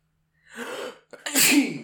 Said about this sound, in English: Yay! Oh, that's a sample right there. Use it. I've always seen when I sneeze, it's like one of those like high energy ad libs where the rapper's dude, substitute it for like the crash.